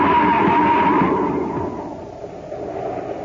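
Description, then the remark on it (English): In a Space Patrol story, a car in fog on a highway skids over the edge of a cliff: a thin, high tire squeal over a loud, dense roar, then the rushing noise rumbles on and slowly fades. No voices. “It's even foggy inside the car. Happy, look out. We're heading for the edge. Huh? We're going over the cliff!”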